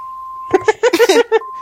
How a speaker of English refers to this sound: Hold on a second, please. I can't believe I'm getting a phone call.